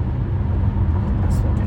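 Steady, loud low-pitched rumble of a car's interior while driving, road and engine noise droning continuously with no breaks, plus a brief faint high hiss near the end.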